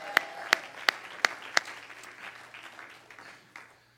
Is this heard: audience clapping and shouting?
yes